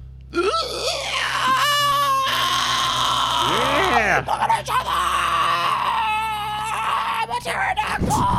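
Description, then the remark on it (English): A person lets out a loud, sustained inhaled scream that mimics a pterodactyl's screech. It is shrill and rasping, with a wavering pitch, and runs for several seconds almost without a break. “Give it an inward scream.”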